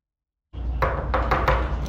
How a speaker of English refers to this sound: So since I didn't have, it wasn't a great recording, I recreated it. This is kind of what the knock sounded like. Hang on, let me play it for you.